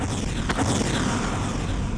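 A string of deafening explosions merges into one continuous, heavy rumbling roar, with a sharper blast cracking through early on. It is loud throughout, with no voices.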